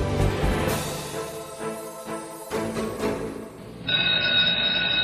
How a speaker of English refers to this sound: The bell for the end of the class period sounded.